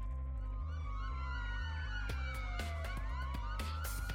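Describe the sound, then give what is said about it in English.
Police sirens wail from a few blocks away, several rising and falling tones overlapping steadily above a low, pulsing rumble, with a few sharp bursts near the end. “Sirens a few blocks. Police have to ruin the fun.”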